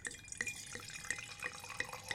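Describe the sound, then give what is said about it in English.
Wine pours into glasses, a steady trickling stream broken by quick bright glugs and bubbly pops every fraction of a second, with no voices. “Yeah, okay, I'll pour some glasses. Let me see if I can do some ASMR.”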